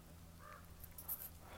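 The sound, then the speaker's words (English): Faint crows caw a few times against a low steady background hum, with no one speaking. “Well, the crows are getting angry. They're saying, we're not going to take that lying down.”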